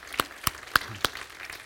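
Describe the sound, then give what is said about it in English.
A group claps together in a steady rhythm as a clap offering to Jesus: four sharp, loud claps evenly spaced, with a softer wash of scattered clapping underneath and no voices. “You know what we do when we clap like that for him? We're applauding what he did for us.”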